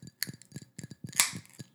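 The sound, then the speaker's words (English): A couple of bright, glassy clinks ring out amid softer tapping and handling sounds, a glass of mocktail with no ice being touched to others in a toast. No one speaks. “Clink, clink, clink.”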